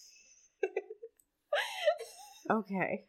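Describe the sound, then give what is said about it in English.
A person imitates a baby alligator's hiss with short breathy bursts, then a longer squeaky, whiny vocal sound with airy hiss on top. It ends in a few wavering, moaning notes. “I know, but like, when they're babies, they make a cute little hissing noise.”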